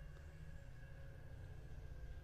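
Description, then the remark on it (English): A low, steady rumble of a train going by on tracks beside a waterfront home, faint and continuous, with a thin whining tone riding above the deep drone and no voices. “I wonder if you could hear the train going by right there.”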